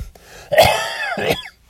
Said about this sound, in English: excuse me. I've had this cough, but it's getting better over the past weeks.